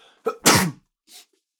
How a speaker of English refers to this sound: I'm going to sneeze. Excuse me.